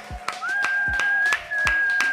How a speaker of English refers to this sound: right now, we just want to stop and give you a big round of applause.